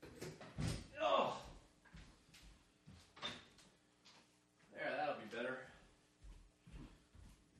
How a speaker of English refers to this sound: Hold on. Give me a second here. I gotta open the door. It's really freaking hot in here.